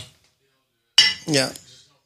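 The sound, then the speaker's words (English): A single bright glass clink rings out with a shimmering high tone as reposado tequila is poured, quickly followed by a short murmur of voice. The rest is near silence. “I'll let you pour for you, okay?”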